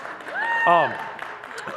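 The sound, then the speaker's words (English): An audience claps in a steady, dense patter through the whole moment as a preacher is introduced before preaching, while voices rise over it with a drawn-out, tuneful call or cheer near the middle. “Let's just agree from now on, like, clapping, I don't like that, and, you know, so just kind of silently turn in your Bibles, okay?”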